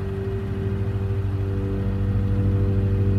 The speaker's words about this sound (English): The forested sentries sway as a three-car caravan descends on the gravel path that winds its way to the front of the Leesburg stockade.